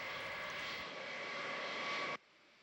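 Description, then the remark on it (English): A loud, steady 707 airplane engine drones with a constant whine, then cuts off abruptly near the end as the engine goes out, leaving only faint background hiss. “You know, there you've got your baddie who's in the aeroplane. And the plane has gone out.”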